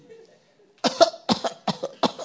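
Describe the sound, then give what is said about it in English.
A voice imitates a goat's cough: four or five harsh, raspy bursts in quick succession, fairly loud, after a brief quiet stretch with faint background murmur. “I was once in a house, the goat was coughing throughout the night.”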